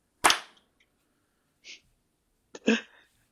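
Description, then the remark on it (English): A sharp, loud clap, made by people clapping on a count of three to sync a recording, rings out and fades, followed after a pause by a faint brief hiss, then two more claps in quick, slightly uneven succession. No one speaks. “Okay, I need everybody to clap on three.”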